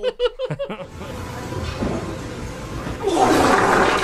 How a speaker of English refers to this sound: You're trying to do that leg press. And that leg press was not impressive for a guy that size either. Oh, yeah. So bubbly. What was impressive was that fart, though. Can I get that one more time?